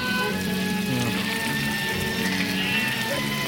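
Steady rain hisses continuously and fairly loudly, with a low, humming rumble underneath like a vehicle driving through the downpour past sheep. No voices are heard.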